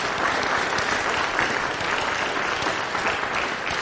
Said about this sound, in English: Give the Lord a big clap.